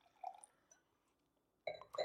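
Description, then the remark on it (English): A person pours themselves another glass of a drink in short, gurgling bursts, one brief splash early on and a fuller pour near the end, with ringing, liquid tones and no talking. “I had to pour myself another glass because what are you going to ask?”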